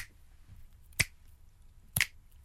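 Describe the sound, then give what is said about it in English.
Two crisp finger snaps, evenly spaced about a second apart, each a sharp bright crack standing out over a quiet low hum, with no voices. “What's your clicking like? Got good clicking”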